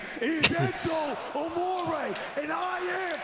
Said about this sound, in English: You smacking your ass over there